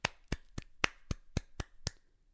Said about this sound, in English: I'm going to cut out the clapping. I thought you wanted a hand. No, I wanted a hand.